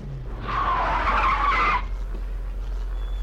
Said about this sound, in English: Looks to me like that Jeep Cherokee spun out of control, flipped over on its side, and slid into that butcher's shop.